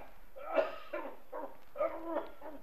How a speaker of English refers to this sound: There. I heard him cough. Did you hear that cough? Hope he's all right. He got out of a sick bed to come here this evening, you know.